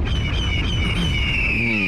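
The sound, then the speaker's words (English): A large bird of prey gives a harsh, drawn-out squawk, loud and fairly close, holding for a couple of seconds over a steady low background rumble. “Did you see the Falcon again? Yeah, was that it?”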